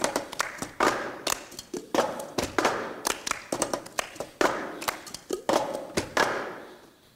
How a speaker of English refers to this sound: We're going to try to do it live, but I'm not sure that any of us are that coordinated to be able to sing, harmonize, and do the cup game.